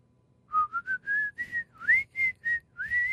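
A person whistles the State Farm "Like a good neighbor" jingle, about nine clear notes in quick succession with a gently rising pitch, heard alone without any talking.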